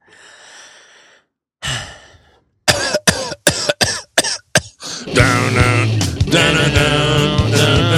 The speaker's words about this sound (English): My daughter's got a persistent cough. Yeah, it's going around. Everybody's got it. Yeah, it's gotten productive, which is hard when you're a kid.